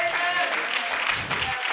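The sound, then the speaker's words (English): An audience claps their hands unto the Lord in a dense, steady wash of applause that fills the room, with a few voices faintly calling out beneath it. “Would you clap your hands unto the Lord and say amen?”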